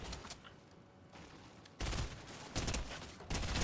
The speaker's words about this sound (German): Hinter uns waren gerade Schüsse.